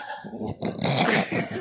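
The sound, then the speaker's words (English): A Vertigo Commissioner torch lighter's flame roars loudly right in the microphone while lighting a cigar, a rough, steady rushing hiss that swells after a brief sputter and holds for over a second, with no talking. “You can hear that thing roaring right in the microphone because David refuses to move it while he's lighting his cigar.”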